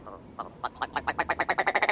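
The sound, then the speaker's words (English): A willow ptarmigan, a chicken-sized bird of the northern tundra, calls: a few scattered harsh notes that quickly speed up into a loud, rapid, stuttering rattle of raspy pulses, growing stronger toward the end. No one speaks. “One such is the willow ptarmigan, a chicken-sized bird of the northern tundra known for its giddy voice.”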